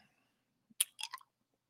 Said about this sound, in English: I'm also going to have a cough drop because I'm not 100%. So sorry about that. You're going to have to listen to me chew on a cough drop.